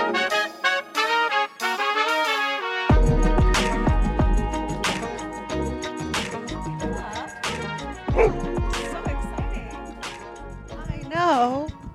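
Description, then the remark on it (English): Roughly half a dozen dogs bark, yip and whine outdoors at Went Wolf Dog Park in Wentworth Park, Garfield Ridge, Chicago, on a cool July evening, the sharp barks coming in quick, irregular bursts over a busy background, with drawn-out whimpering cries at the start and near the end. “Roughly half a dozen dogs and their owners were there on a cool-ish July evening.”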